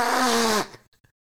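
Someone blows their nose in one loud, buzzy honk that holds a steady pitch for about half a second, then trails off into a couple of faint soft clicks.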